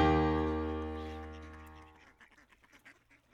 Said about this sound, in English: Master Miller's ducks with speed gobbled up the coarse grain feed.